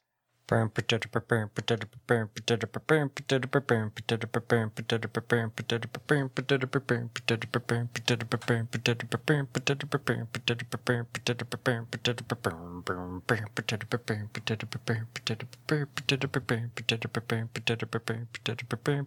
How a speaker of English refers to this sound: give me that paper crumpling theme song.